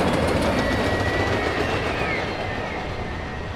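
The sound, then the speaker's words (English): An elevated city train in Chicago rumbles and lurches along the tracks, with steady clattering and faint metallic squeals over a dense low roar that eases slightly toward the end. “I will always be lulled by the city's lurching trains.”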